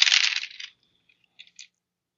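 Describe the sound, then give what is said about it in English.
Dice clatter across a hard table in a bright, rattling burst that fades within a second, followed by two small clicks as they settle, with no voices. “Yeah, I'll tell you how many dice you can roll for each, how many, like, negative modifier you'll have each time.”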